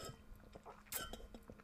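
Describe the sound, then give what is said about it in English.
Quiet drinking of water: soft sips and swallows mixed with a few small glassy clinks and wet clicks in an uneven rhythm, with no one talking. “ASMR, drinking water.”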